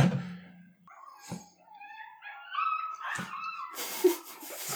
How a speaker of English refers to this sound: For the listeners at home, we're not harming any dogs. The bar guest is here. He's shrunk. It's a little chihuahua.